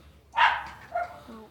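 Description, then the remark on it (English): A chihuahua lets out a sharp, high yappy bark, followed by a shorter whining yip trailing off, moderately loud with no one talking. “It's a chihuahua.”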